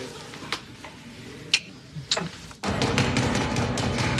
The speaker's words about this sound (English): What's that? It's just urgent knocking. It'll go away.